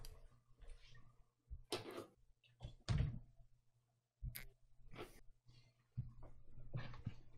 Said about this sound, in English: What happened? Random breeze blew your door open? No, it's just like cats. Just like break in here and just start fighting.